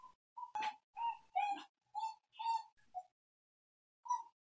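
A puppy whines in a string of short, high-pitched whimpers, about eight close together and one more after a brief pause, heard clearly on its own with no one talking.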